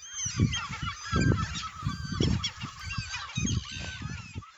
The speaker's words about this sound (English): Now, these birds were recorded in the Shetland Islands. There were many different types of birds there, so many different types of birds. The oyster catchers were ever present and they sounded like this.